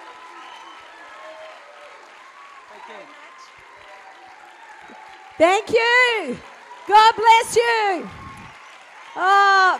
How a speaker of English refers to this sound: I love getting the standing ovations at the beginning because you don't get one at the end for the most part. So thank you so much for having me.